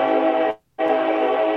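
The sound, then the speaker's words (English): A loud horn from a train passing in West Georgia, next to the tournament, sounds in two sustained blasts separated by a brief silence, its rich, chord-like tone steady, with no talking over it. “Did you hear a train?”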